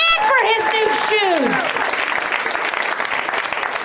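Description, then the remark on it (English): At a stand-up comedy show, an audience breaks into loud, steady applause for a birthday girl, dense clapping that continues throughout, with high whoops and cheering voices rising and falling over it in the first couple of seconds. “Well, round of applause for that birthday girl.”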